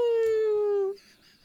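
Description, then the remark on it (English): A single voice imitates a wolf howl: one loud, sustained tone that slides slightly downward for about a second, then cuts off into quiet room noise. “I know that's how the wolves describe themselves.”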